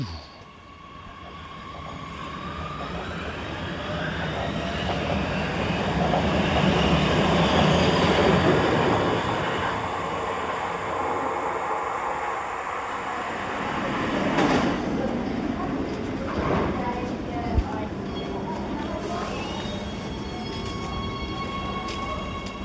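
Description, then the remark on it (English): A train pulls into an above-ground subway (T-Bahn) stop, its loud rumble and rail screech swelling over several seconds, then settling into a steady hum with a few clanks and a sharp knock near the end. “Anyway, I think the train's going to come soon, so maybe I'll start recording again in the stationery shop and we can see how that is.”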